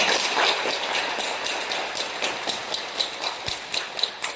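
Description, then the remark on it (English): Audience applause welcoming Bishop Peter Feng of Hengshui Diocese, Hebei Province: dense, crackling clapping from many hands, steady and fairly loud throughout, with a few sharper individual claps standing out toward the end. No voices are heard. “Yes, okay, let's go applause for welcome.”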